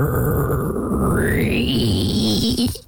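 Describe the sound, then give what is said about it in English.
A voice imitates a door knob being turned slowly: a continuous, strained creak with a rising squeaky whine over a low rasping hum, lasting about three seconds at steady loudness. “He turns the knob slowly.”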